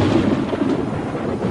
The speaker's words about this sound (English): Thank you, and then you've got the ominous thunder in the background. As if maybe it's not the best thing for the ego. Yes, there is a thunderstorm playing out, isn't there?